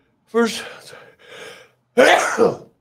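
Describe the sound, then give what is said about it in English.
A person sneezes once on camera: a drawn-out, breathy wind-up of catching gasps, a short pause, then a loud explosive burst that trails off quickly. “first time I've ever sneezed on camera, right here on your show, brother.”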